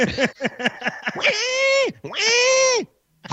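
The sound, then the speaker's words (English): A person imitates a pig, loud: a quick run of about five short grunting snorts, then two long, high, strained squeals that sag at the end. “That's my pig impression.”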